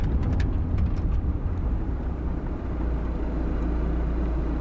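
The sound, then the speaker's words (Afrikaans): A car slowing to a stop at night at a deserted place, its low, steady engine and road rumble easing slightly partway through, with no voices. “Wag, wag. Stadiger. Daar's 'n bordjie. Stop die kar.”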